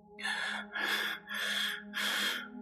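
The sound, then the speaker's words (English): A voice imitates heavy breathing: four loud, raspy breaths in a steady rhythm, each a drawn-out huff separated by short pauses, with no words spoken. “A few minutes later, we heard some really heavy breathing.”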